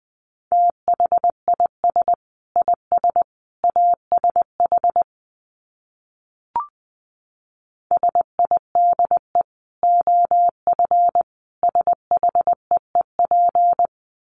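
A steady mid-pitched Morse code tone keys out dots and dashes at 20 wpm in two long bursts, separated by a few seconds of silence and a single soft click.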